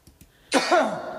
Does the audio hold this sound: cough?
yes